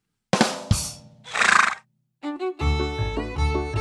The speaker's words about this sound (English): How do horses say hi to each other? How? Like this.